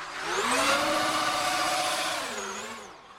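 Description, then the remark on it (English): An electric race car sweeps past with a high motor whine over a broad rushing whoosh of wind, swelling loud in the middle, then sliding down in pitch as it fades away. “Whatever the car, what you hear mostly is the wind noise, the aerodynamics noises. But it's a kind of like whoosh, you know, kind of wind noise that you get.”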